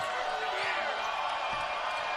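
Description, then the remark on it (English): A basketball arena crowd at a BYU versus West Virginia game roars steadily and grows louder after a made three-pointer, a dense wash of cheering and voices filling the space, with faint court thumps beneath it for about two seconds. “BYU within eight, 47-38 West Virginia, and the crowd starting to get louder.”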